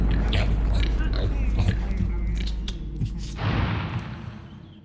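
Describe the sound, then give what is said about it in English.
Busy gnawing and chewing as tied-up captives chew through the ropes binding them, several mouths biting and tearing at once in a steady scratchy clamor, mixed with small grunting, snorting voices that fade slightly toward the end. “Everyone, chew the ropes off.”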